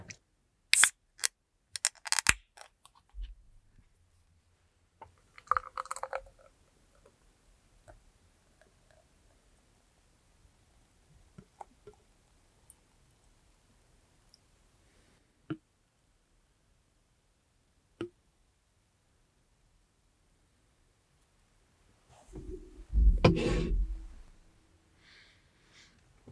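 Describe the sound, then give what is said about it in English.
A can or bottle of juicy-style craft beer is cracked open with a few sharp clicks and a short hiss, followed by scattered handling taps, then a loud, rushing pour into a glass. No one speaks. “So I'm going to crack this and we'll see how we like it.”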